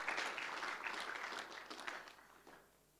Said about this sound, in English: So let's give this travelling man a big round of applause